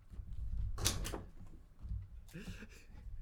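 A pencil is thrown at a noisemaker and strikes with a sharp clattering knock, followed a moment later by a second, softer rattle against a low background rumble.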